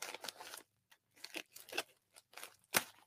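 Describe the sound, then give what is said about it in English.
Arsenal scissors snip repeatedly through crinkly plastic packaging from Curly's Lures of West Point, Utah, a series of crisp cutting bursts with brief pauses between them and a sharper final snip. “The old Arsenal scissors slice into this.”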